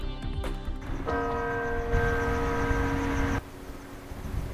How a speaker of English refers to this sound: Across the world this morning, Catholic Church bells rang in honor of Pope Emeritus Benedict.